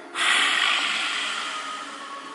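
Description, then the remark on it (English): A single forceful, breathy exhale with the tongue stuck out, a yoga lion's breath taken from a lunge, starts abruptly and trails off slowly over about two seconds, a loud airy hiss with no voice in it. “Now this time as you exhale, stick out the tongue, lion's breath.”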